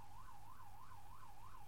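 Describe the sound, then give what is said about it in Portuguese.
An ambulance siren wails in a quick, steady rise-and-fall pattern, repeating several times over a low rumble of traffic, fairly faint, with no voices. “Ok, cadê esta ambulância?”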